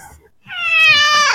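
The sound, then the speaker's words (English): A single loud, drawn-out cat meow, strongly harmonic and rising in intensity before cutting off sharply, with no talking. “Yeah, sorry, this animal is losing its mind. It's rabid as all hell. Well, the cat really loves the double.”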